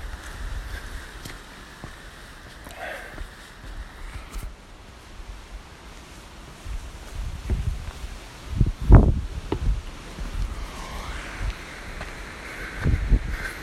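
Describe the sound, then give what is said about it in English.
Someone clambers over a stile outdoors on a windy walk: a few scuffs, thumps and clothing rustles, busiest toward the end, over a steady rush of wind. No one speaks. “I just need to climb over a stile here.”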